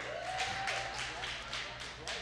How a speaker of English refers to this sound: I got a couple claps.